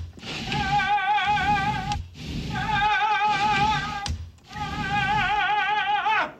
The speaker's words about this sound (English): So he's opening and closing the door on the balcony.